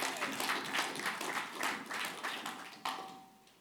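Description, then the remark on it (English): A church audience claps together during a morning service in a dense, steady patter of many hands, sustained for a few seconds before a final sharp clap and a quick fade. “Let's give him a clap this morning.”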